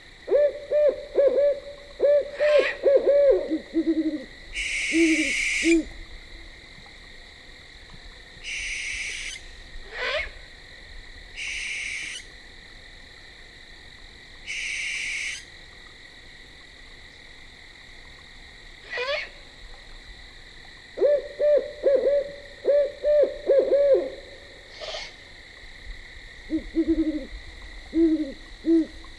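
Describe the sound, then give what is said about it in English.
Owls hoot at night in repeated clusters of quavering calls, some clear, others softer, over a constant high-pitched night chorus with occasional short bursts of other calls; no one speaks. “And I credit the owls with a desire to fill the night with music.”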